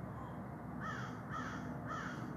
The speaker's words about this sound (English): Crow? Fuck's sakes, where are they? I'm alone in the dark forest and they leave me alone and I start hearing noises. And then the crow's like, yep, that was a puma, yep.